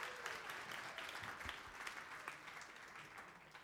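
A crowd claps steadily, a dense, even patter of many hands holding at a fairly constant level for several seconds with no voices standing out.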